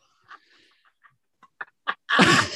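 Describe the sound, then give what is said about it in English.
A single loud sneeze bursts out near the end, preceded by a few short, quiet catching breaths and sniffs as it builds up. “Bless you.”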